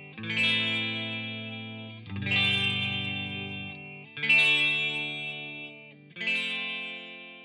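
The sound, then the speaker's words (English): A second electric guitar in the second half of a song strums four sustained chords about every two seconds, bright, trebly and chimey, with a swirling flanger wash sweeping through each held chord for a washy, psychedelic feel. No voices. “In the second half of the song, another guitar comes in strumming and holding out the chords with an extra trebly chimey sound. There's also a flanger effect that gives it a real washy sort of psychedelic feel.”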